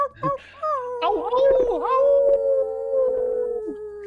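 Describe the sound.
A person gives a full-moon wolf howl: a sustained, wavering vocal howl that rises, bends and slowly falls, loud, starting with a few short yips before settling into one long drawn-out note.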